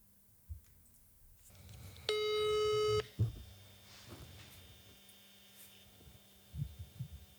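A telephone ringback tone sounds once as a steady, buzzy one-second burst while phoning a seller about a Blocket classified ad, then leaves a quiet pause with a low hum and a few faint clicks and thumps, and no talking.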